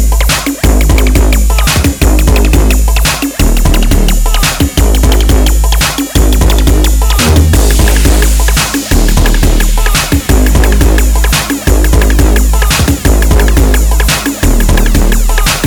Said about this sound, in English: And the best thing about this tune is what you're hearing now is only the intro.